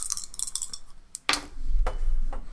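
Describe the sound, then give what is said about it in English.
Dice rolled to navigate city streets in a game rattle and clatter in a quick burst of small, sharp clicks, followed by a few louder knocks as they tumble and come to rest on a 6. No one speaks. “These are bad dice. I'm rolling different dice next time.”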